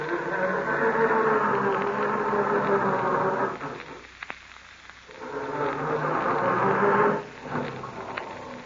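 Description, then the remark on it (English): A car engine cranks slowly with a heavy, labored grinding, in two long attempts separated by a short pause, followed by a brief final burst. Loud and steady, with no voices. “For that slow, heavy grinding is possibly caused from oil so stiff and heavy, it acts like glue in your motor.”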